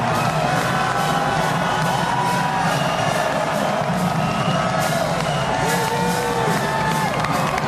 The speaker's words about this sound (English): I'm walking over to the BYU fans right now just so you can hear a little bit of the crowd noise. They're feeling it. They're excited.